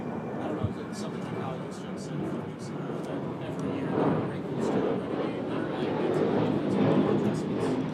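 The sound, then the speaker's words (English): An airplane flying overhead, a steady broad roar that swells gradually louder over several seconds, with faint indistinct voices underneath. “sorry, the plane.”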